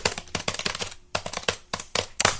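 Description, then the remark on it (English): Loud, rapid typing on a computer keyboard, a dense run of sharp clacking keystrokes with a brief pause midway, clear with no voices. “That was a funny reference to the loud keyboard sounds that appear in MGM issue number 1 from November or September of 2015.”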